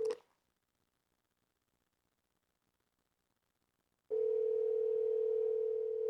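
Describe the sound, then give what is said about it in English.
A loud, steady ringback tone on a phone line during an outgoing call to a prize winner: a brief burst at the start, about four seconds of silence, then the tone sounds again and holds to the end. No one speaks. “Oh, it's ringing.”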